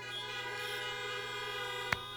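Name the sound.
car horns honking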